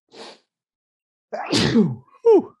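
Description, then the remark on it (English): A quick intake of breath, a pause, then a loud sneeze burst, followed right after by a shorter voiced second sneeze. “Bless you.”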